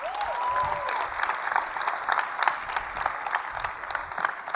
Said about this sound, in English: Thanks for being here. Let's clap it up.